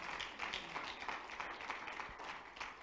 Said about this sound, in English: Somebody say amen. Clap your hands to the Lord. He's worthy.